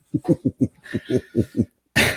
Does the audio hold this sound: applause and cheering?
no